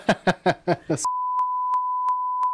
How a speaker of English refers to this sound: Again. Beep. That word's probably beep, okay. Beep.